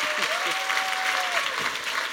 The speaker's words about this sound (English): Big round of applause for Karen Guggenheim. Thank you. And Tal Ben-Shahar.